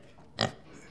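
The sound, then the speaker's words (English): A voice makes a single short, loud piggy oink, a quick grunting snort against a quiet background, imitating Golosis the pig eating a candy kobold. “Don't worry, pigs can eat anything.”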